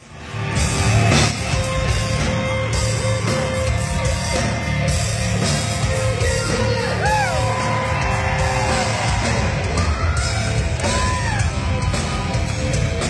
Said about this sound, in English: So far, he's not even trying to sing yet. He's just running around. His pear-shaped body. He's just yelling. There's no vocal at all.